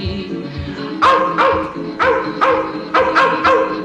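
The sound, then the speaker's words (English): Wild dogs snarl, bark and yap loudly, in quick pairs of sharp yelps repeating about every second, over a low rumbling background. “They're waiting for the shotgun man to end it, and they're snarling, yapping, yelping like a dream. The wild dogs of Kentucky, the wild dogs of Kentucky.”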